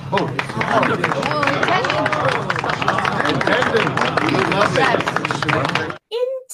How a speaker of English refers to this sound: The crowd applauds their commander.